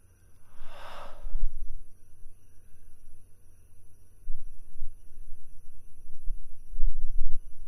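A single sharp, breathy exhale bursts out near the start, then gives way to a long stretch of quiet low rumble with no talking.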